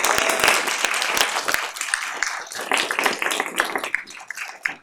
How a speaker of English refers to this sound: Give our presenters another round of applause.